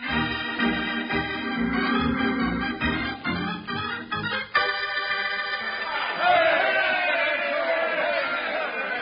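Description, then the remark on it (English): A rowdy crowd outside shouting and clamoring, many voices overlapping in a steady din that swells noticeably louder and rougher toward the final few seconds. “With that crowd out there, I figure I'll need them a lot worse than a highfalutin speech.”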